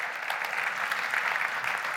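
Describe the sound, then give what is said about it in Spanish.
A church audience applauds steadily for Jesus, a dense, even wash of many hands clapping at once with no pauses, sustained at a consistent loudness throughout. “Come on, now, podemos darle un aplauso fuerte a él.”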